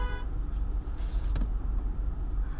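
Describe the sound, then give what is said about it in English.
Steady engine rumble of cars in traffic near a U-Haul truck, as a car tries to make a left turn across lanes in front of it, with a short tonal toot at the very start and a couple of brief hissy whooshes as vehicles pass. No one speaks. “But to be fair, this car is trying to make a left turn across lanes in front of a U-Haul, and it's probably one of the dumbest ideas you could do because you can't see anything for one.”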